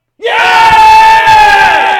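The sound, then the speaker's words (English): A stadium crowd on TV erupts in a loud goal cheer as the Matildas go 2-0 up, starting abruptly and holding as a steady, voice-filled roar for about two seconds. “Matilda's just going 2-0 up. Oh, sorry, listeners. The Cam has really forced us to have this on.”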